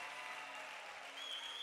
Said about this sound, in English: And some of y'all ain't clapping like you on a special diet, but I see you in that line after every service with a donut in your hand.